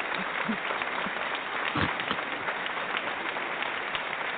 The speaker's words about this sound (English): It was his fake clap. It wasn't me. It sounded like raindrops. It sounded like raindrop.